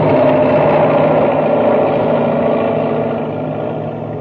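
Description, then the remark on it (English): A giant six-wheeled driller roars past with a dense, rumbling engine drone, loud and steady throughout, easing off slightly toward the end. No one speaks. “And now, as Buzz tries to pull Happy free, the enormous driller roars down upon them.”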